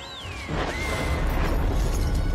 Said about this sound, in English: I remember watching the making of, and this was obviously clear, huge, huge scene, huge explosion. So much in that.